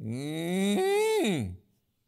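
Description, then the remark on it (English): A person imitates a cow with one long, drawn-out moo, loud, the pitch swelling upward before sliding down and fading out, followed by brief silence. “4, you make cattle sounds like at the slaughterhouse.”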